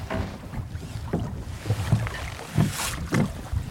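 A small boat moves across a loch in Assynt, Scotland, with hollow knocks and low sloshing against the hull amid a steady outdoor rumble and some breeze, moderately loud, with no voices.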